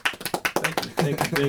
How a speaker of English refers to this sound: Keep that round of applause going.